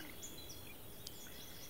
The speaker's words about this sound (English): There's birds playing in the background.